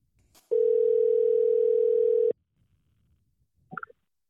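A steady, loud telephone dial tone while placing a call holds a single low pitch for about two seconds, then cuts off abruptly, followed by quiet and a brief clattering sound.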